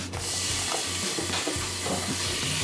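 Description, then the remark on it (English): Bite-sized pieces of chicken breast sizzle in a hot pan, a steady, loud crackling hiss throughout, with a low intermittent rumble and occasional scraping underneath and no voices. “Okay, should we throw some of this in?”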